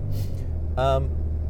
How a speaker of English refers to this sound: All-wheel drive, just getting out onto the highway here, now I'm on hard, dry pavement. So my four-wheel drive is off, and we're off on the highway.